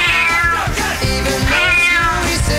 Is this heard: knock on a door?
no